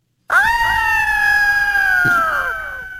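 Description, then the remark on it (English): A human voice imitates an eagle cry: one long, high, shrill screech that holds steady, then bends slightly downward and trails off into an echoey tail. No other voices. “Here's an echoey eagle.”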